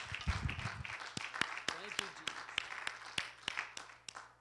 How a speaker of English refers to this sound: God can do that. Amen. Let's give the Lord a hand clap of praise for what he's doing.